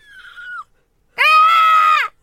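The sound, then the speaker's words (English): A person imitates a peacock's cry: a short, thin high-pitched note, a brief pause, then a loud, harsh, nasal wail held for nearly a second before cutting off. “I do quite a good peacock impersonation. I can do this for you.”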